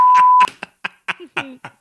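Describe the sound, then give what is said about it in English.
A single loud, steady censor bleep tone lasting about half a second, cutting off speech, followed immediately by a voice talking in short bursts. “I'm going to beep pedophile.”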